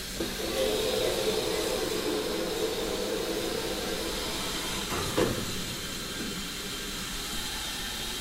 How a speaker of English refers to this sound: Lots of expensive cameras on tripods, microphones at the top, to record the sounds of the trains in the Autumn Steam Gala. 76017 has just been connected to the carriages.